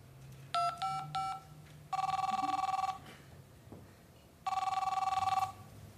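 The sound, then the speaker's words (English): Three quick electronic beeps, then a telephone ringing in two long, even bursts separated by a pause as a call is made for help, a bright buzzing electronic tone over a faint low hum, with no voices. “I'm calling for help.”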